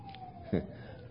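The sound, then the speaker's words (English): A fire truck siren at Calvary Chapel, the truck coming back the way it went earlier, passes as a faint, steady wail that slowly slides down in pitch, with a brief low thump partway through. “A while ago, a fire truck went up that way. Now it's coming back this way.”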